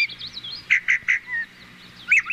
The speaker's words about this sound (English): It would be a nice sound if you enjoy the calls of a mischievous yellow-bellied sapsucker